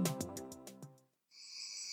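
A northern leopard frog gives a rapid, rattling, snore-like croak of about six pulses, then falls silent before a steady, high-pitched trilling drone takes over.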